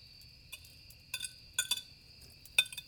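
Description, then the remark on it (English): Several light clinks of a wooden spoon against a pot as a meager dinner is heated, by men sitting on felled logs in East Texas, scattered irregularly over a few seconds, moderately soft over a faint low background hum. “the occasional clinking of a wooden spoon against a pot as William heats up their meager”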